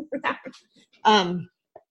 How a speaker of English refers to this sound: I'm sorry, my dog is going nuts in the background. It's delivery time, and there must be a delivery person out there. Stop.